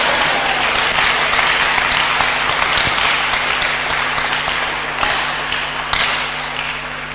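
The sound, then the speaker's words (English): An audience breaks into sustained applause, a dense, steady wash of many hands clapping that holds at an even level for several seconds with a low hum running beneath it. “Father, those who are clapping, I pray, bless them more.”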